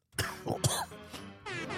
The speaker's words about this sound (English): Just cough in there.